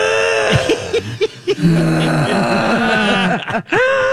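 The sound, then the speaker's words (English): A person vocally mimics a loud, rumbling snore heard at 11 o'clock at night, likened to a train or a big truck, with harsh, rattling groans rising and falling in repeated bursts over about four seconds, forceful. “Anyway, that was at 11 o'clock at night when we had a, I don't know if it was a train that was coming through our bedroom or if it was a big, huge truck that just went like this.”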